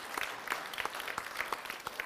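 A round of applause from a crowd, steady overlapping claps filling the whole stretch at an even, moderate loudness, with no voices standing out.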